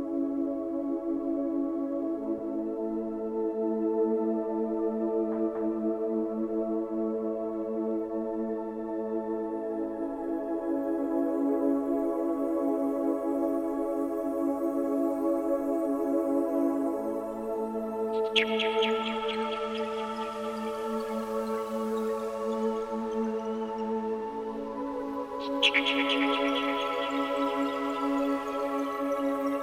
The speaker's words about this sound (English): I don't like talking over this, but I just want you to picture the scene that's in my mind with this tune. Beach, rolling waves, you know what I mean? Sun just going down, just sort of like just ending the day.